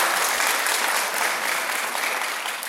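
A crowd breaks into steady, sustained applause for a young man who just graduated high school, a dense wash of clapping that stays loud throughout with no voices standing out.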